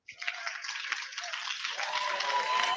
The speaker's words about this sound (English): Can we get a round of applause for everybody in Texas right now?